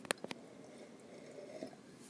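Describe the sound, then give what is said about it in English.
Two sharp clicks, like a cup being handled, followed by a faint, drawn-out slurp as the last of a coffee is sipped. No one speaks. “And I've got a little bit of coffee left, so let me suck this baby down.”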